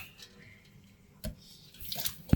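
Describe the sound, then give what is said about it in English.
Hot water being poured out, a soft, steady trickle with a low background hiss, broken by a few sharper splashes and knocks near the end. “How much can you hear the water? How much? I don't know. We are pouring out.”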